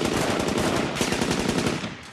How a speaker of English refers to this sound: Shooting begins in the streets below Spielmann's apartment.